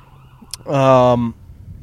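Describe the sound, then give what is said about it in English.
A loud, brief emergency siren wail from a passing ambulance or fire truck, a steady tone that dips slightly as it cuts off, over a low background rumble. “And we have a ambulance zooming by us now, or a fire truck.”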